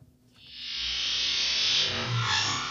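The Enterprise sci-fi sliding door opening, slowed down to 0.25 speed: a long, smeared whoosh that swells from near silence into a sustained hiss with a low rumbling undertone, lasting a few seconds.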